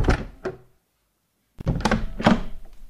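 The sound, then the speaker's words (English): A door is pushed shut with a couple of dull, heavy thuds as someone leaves by the door instead of the chimney, then a short silence before another burst of knocking and rattling, fairly loud. “Actually, I'll never get back up the chimney. Can I just use the door?”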